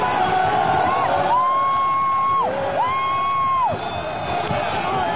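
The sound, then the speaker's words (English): A large crowd yells and shouts together in a dense, continuous roar, with people yelling "boo Antifa", and two long, loud, sustained high-pitched cries rising above the noise in the middle before the crowd din continues. “So you have people yelling, boo Antifa, boo Antifa.”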